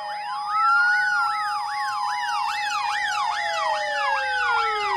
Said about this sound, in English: Until his evil weapon is totally depleted of electrical energy, Mr. Voss is utterly flummoxed, but he can now hear the sirens of a squadron of Justice Facilitators electric scooters off in the distance, but swiftly approaching.